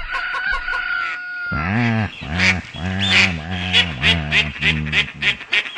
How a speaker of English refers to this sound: This portion of the show brought to you by Birds That Chirp at 4 a.m. You can't catch your worm unless you're an early bird, too.